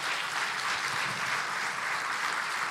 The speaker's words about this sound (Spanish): Aleluya. Dar un aplauso.